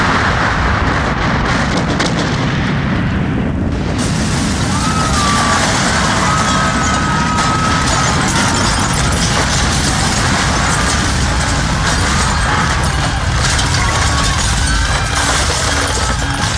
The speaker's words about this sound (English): There's been a large explosion in the science dome, Supremo.